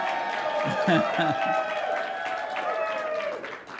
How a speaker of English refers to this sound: So glad to have you here. You guys can cheer. It's okay. It's okay.